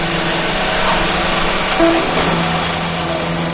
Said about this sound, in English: That's the truck?